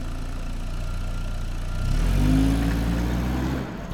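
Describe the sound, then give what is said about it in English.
An old, slightly rusty Chevrolet Caprice engine drones steadily, heard from inside its trunk. It makes a low continuous rumble that swells briefly as it revs slightly, then settles back into a monotonous hum. No one speaks. “But all they hear is the drone of the Caprice.”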